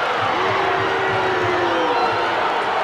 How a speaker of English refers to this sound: Crowd here didn't like it. I thought it was a good call.